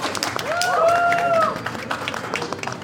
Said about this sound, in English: We're actually gonna put this applause in when I'm done with my interview.